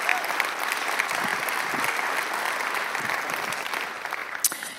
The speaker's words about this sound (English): So let's give them a round of applause, because that's a lot of work.